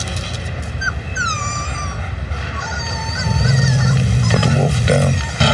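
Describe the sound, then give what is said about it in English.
A young wolf whimpers and yips in a few thin, high-pitched cries and short rising squeals over steady background noise, followed by a low rumbling growl-like drone toward the end. “Not a puppy, a wolf. What now? He's a wolf, and that is its incredibly protective mother.”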